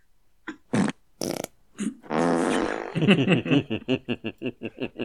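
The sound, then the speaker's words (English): A string of loud fart sound effects: a few short sputters, then a long, rasping blast that breaks into a rapid series of quick, rhythmic toots, with no talking. “Those are good fart sounds.”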